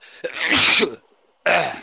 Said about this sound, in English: Bless you.